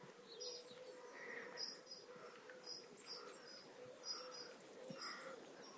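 A blackbird's sharp alarm notes, not song, repeat at irregular intervals over a steady chorus of birdsong with soft, lower cooing woven through, outdoors amid cockerels and lots of pigeons, in early morning before the sun is visible, under high, fluffy clouds.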